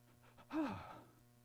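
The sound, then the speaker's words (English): A single sharp, exaggerated gasp made by a voice in mock shock, a quick breathy intake with a rising pitch, fairly loud before fading out. “What? Gasp. That's not right.”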